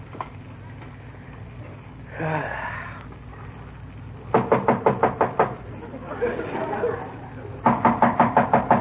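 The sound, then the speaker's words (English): Two bursts of rapid, loud knocking on a door, each about seven or eight sharp raps in quick succession, separated by brief murmured voices and a low background hum. “somebody at the door.”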